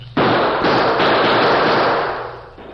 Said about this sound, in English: Faced with an advancing wall of gunfire from the Redford sheriff and a group of excited townsmen, the Lone Ranger put his own guns into action to cover a retreat.